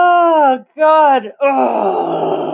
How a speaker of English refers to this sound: I'm going to get a yawn out.